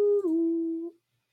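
A puppy lets out one short, whining howl that dips slightly in pitch and holds steady for under a second before cutting off. It is clear, with no talking.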